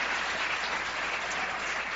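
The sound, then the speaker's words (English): Sustained applause from an audience clapping for their pastors, a dense steady wash of many hands clapping at once, fairly loud and even throughout with no voices standing out. “So let's give your pastors a hand clap.”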